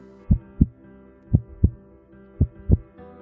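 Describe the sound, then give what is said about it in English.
Steady heartbeats of unborn twins picked up by a doctor's heartbeat wand on the mother's stomach: three clear lub-dub pairs of low, muffled thumps about a second apart, over a faint background hum, with no talking. “It all began with the sound of multiple heartbeats.”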